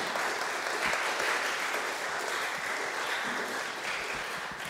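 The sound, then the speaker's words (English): A church audience gives a woman a round of applause after her talk, clapping steadily and fairly loudly for several seconds, a dense, even patter of many hands that fades slightly toward the end, with no voices standing out. “Could we give her a round of applause?”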